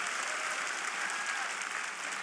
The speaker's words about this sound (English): Clap your hands on that verse.